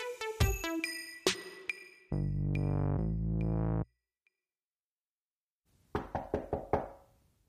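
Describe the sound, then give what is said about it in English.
A quick burst of about five hard knocks on a door near the end, coming after ringing chime tones, a long buzzing tone and a short silence. No one speaks. “Jeez, why are you knocking like the cops?”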